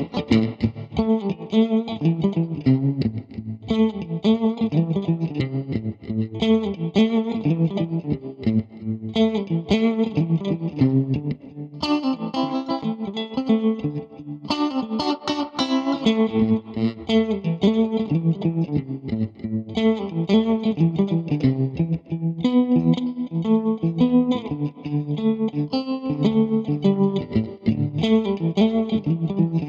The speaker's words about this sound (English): Here, I'll play some clean, wobbly, echoey Stratocaster for you.